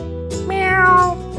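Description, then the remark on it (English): A single drawn-out cat meow, rising and then falling in pitch, fairly loud, with a faint background hum and no talking. “Where's the kitty?”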